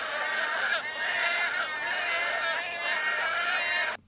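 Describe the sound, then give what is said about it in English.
A human voice imitates a wood stork's call with a loud, raspy, croaking groan held for about four seconds, wavering with rough pulses before cutting off abruptly. “You have wood storks that sound like...”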